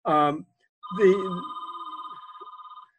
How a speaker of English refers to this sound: Phones are ringing. That shows the world that we're not making this up. You are at the store. This one's going to ring through a few times.